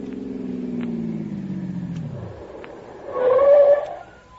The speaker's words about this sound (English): They're getting back in their car and they're pulling away.